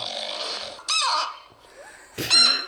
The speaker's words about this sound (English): it's not a chew toy, is it? It's a real chicken.